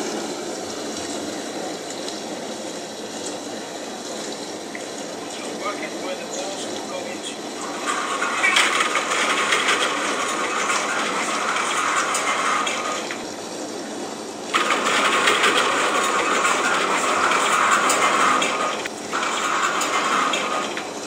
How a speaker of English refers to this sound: I will leave the dishwasher going on in the background. I think it's on cycle 3, so it's quite vigorously washing those balls.